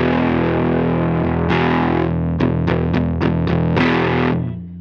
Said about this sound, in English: I'm going to go gain all the way down, volume up a little bit. Vintage mode. Bringing some gain in. You ready? Yeah. Hit it.